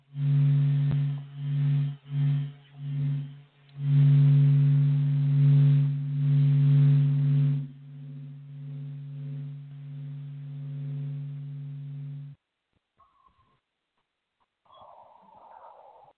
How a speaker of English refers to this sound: And you get all of these extraordinary sounds, which in the largest sense are absolutely real. If you could hear radio waves.